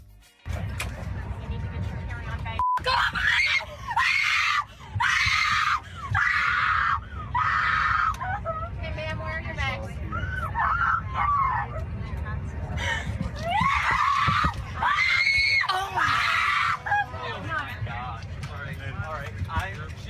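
A woman screams repeatedly in long, shrill bursts over a steady low cabin drone on an airplane in flight, with short gasps and pauses between the cries.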